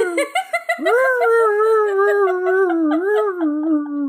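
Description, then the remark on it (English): A person imitates a police siren with a long, wavering wail that slides up and holds, dipping and rising again, after a few short yelps at the start. It sounds a bit like a howling dog. “I have a very bad siren.”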